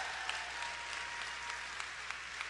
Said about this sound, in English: Yeah, people cheering for this. Seriously.